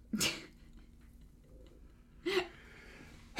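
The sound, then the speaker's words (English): Two sharp sneezes about two seconds apart break an otherwise quiet moment, and a voice starts up right at the very end. “Bless you.”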